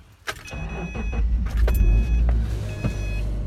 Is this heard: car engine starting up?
yes